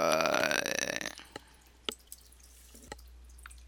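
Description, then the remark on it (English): A loud, rough gurgle of bubbling water for about a second, then quieter scattered drips and plinks from a fish tank. No one speaks. “And while I'm trying to get him back on air, y'all, that water y'all hear in the background, that is this fish tank beside me.”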